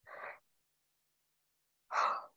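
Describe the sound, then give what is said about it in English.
Two breathy vocal exhalations, a short one and then a fuller, louder one after a pause, like a yawn or sigh, with no speech. “Oh, I'm still yawning.”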